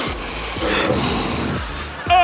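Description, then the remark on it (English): A run of sharp, breathy nasal sniffs by the president comes in quick succession, each a short noisy inhale, repeated several times over a couple of seconds. “Now that's what I call the president sniffing.”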